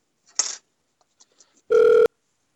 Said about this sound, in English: Oh, we got a phone call.